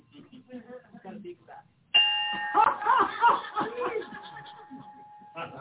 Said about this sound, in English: Okay. Hit that bell.